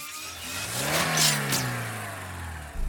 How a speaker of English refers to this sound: hit the gas! I'm working on it.